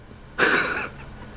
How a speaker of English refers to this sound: Gesundheit.